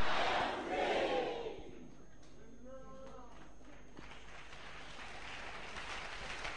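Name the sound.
audience shouting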